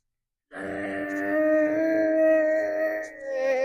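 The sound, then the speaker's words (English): A child's voice imitates a lawnmower with one steady, buzzing hum that starts abruptly and holds for about three seconds, fairly loud, with no words spoken. “Lawnmowers. Those are really noisy sometimes, huh? Like when Daddy's out there mowing the lawn. What's it sound like?”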